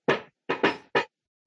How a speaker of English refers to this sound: You heard that. That is the African knock. All music started off with.